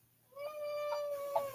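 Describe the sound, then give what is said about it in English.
A cat lets out one long, drawn-out meow, steady and fairly loud. There is no talking around it, just a brief quiet moment before the cry begins. “Sorry, it's the cat.”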